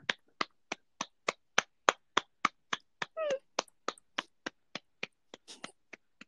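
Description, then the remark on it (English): One person claps for themselves after telling a joke, clapping steadily at a brisk, even pace with about twenty sharp claps over six seconds, and a brief high-pitched squeaky vocal sound cuts in partway through. “I love your round of applause for yourself.”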